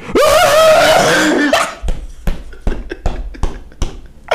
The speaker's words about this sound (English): That dog was mad.